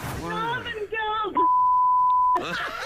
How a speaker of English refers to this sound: So anyway, we beeped out a little bit at the end. I'm going to play it for you. Here we go.